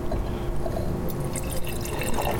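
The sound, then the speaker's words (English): Joy Riesling wine, 2020 vintage from Del Rio Springs Vineyard, pours steadily into a glass, a continuous liquid splash and gurgle with bright high-pitched trickling that builds slightly as the glass fills, with no voices. “I'm also going to pour some in our special quasi-somm glass here.”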